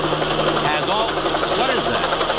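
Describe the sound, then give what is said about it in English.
A loud, steady helicopter drone coming this way, with a rapid rhythmic chopping and whirring engine tone, filling the whole stretch without pause and staying consistent in volume. “It's a helicopter. It's coming this way.”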